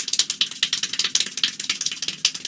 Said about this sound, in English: All right, let's go to Iowa, where we have a new world record holder for the most claps in a minute. Over 1,100 claps in 1 minute. This is the end of him breaking the record.